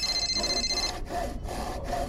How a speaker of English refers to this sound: Keep sawing. I'll hang on to the tree.